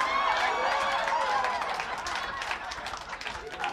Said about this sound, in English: She's a good sport. She's clapping too. Give her a hand.